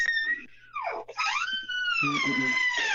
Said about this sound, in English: opening the squeaky door. That's the one. Squeaker.